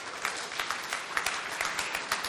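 A crowd of people clapping together, a steady dense patter of many hands at moderate loudness, with no voices standing out over the applause.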